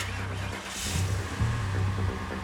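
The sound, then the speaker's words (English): A car engine starts and runs with a deep, steady rumble, rising briefly in a couple of short revs before settling back to a loud idle, as a young woman at the wheel hastily pulls out of a parking space. “A car roared to life behind the creature.”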